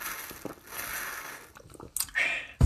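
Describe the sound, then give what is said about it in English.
A sip of white grape peach flavored water: soft slurping and wet mouth sounds, a gulp, then a sharp click at the end, with no one talking. “Let me take a little bit of a sip of water, actually.”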